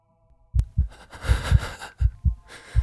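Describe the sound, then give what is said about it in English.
A rapid heartbeat of deep, paired thumps repeating quickly, with a breathy whooshing hiss running between the beats; no voices. “It seems that you are currently experiencing increased heart rate.”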